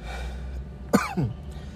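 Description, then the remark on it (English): A short allergy cough: two quick, rough bursts in close succession, the second slightly weaker, over a quiet background hum with no talking. “I know, I still have allergy coughs and stuff like that.”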